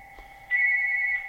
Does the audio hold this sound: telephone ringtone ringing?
yes